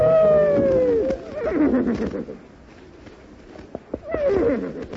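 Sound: horse neighing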